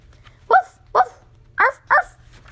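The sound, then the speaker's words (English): Four short, high-pitched puppy barks in an uneven rhythm, fairly loud, with quiet pauses between them and a low hum underneath. “Oh, Biscuit, here comes the little pup.”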